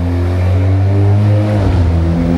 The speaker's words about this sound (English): Traffic roars as the world wakes up on this Monday morning.